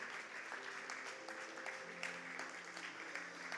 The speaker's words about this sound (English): Yeah, you can give God a hand clap of praise.